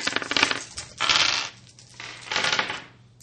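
Dice rattle and clatter across a hard tabletop in three quick bursts during a tabletop game, each a short tumbling roll with brief pauses between. Fairly loud, with no talking.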